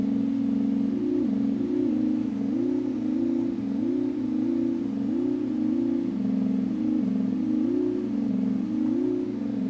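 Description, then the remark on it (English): A synthesizer arpeggio in held, ordered mode loops a short pattern of stepped notes in the order the keys were pressed, rising and falling in a steady rhythm over a sustained low drone, with a buzzy, continuous tone and no voices. “So whatever order I press keys and let go, it's just gonna keep playing that little order of keys.”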